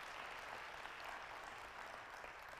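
A crowd claps steadily for a few seconds as a hand clap of praise to the Lord during a sermon, a dense wash of many hands applauding together, with no voices standing out.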